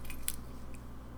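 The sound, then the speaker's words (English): Keys jangling in a few brief, bright metallic clinks, scattered over about a second, fairly quiet against a steady low background hum, with no one talking. “Again, with the keys,”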